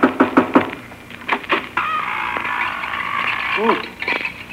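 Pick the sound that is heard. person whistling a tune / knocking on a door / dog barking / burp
knocking on a door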